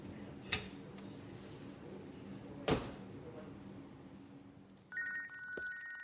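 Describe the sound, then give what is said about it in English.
Two sharp knocks sound, then a telephone starts ringing with a steady, bright electronic trill that continues to the end, moderately loud. “Tuesday, the following day, and I get a phone call”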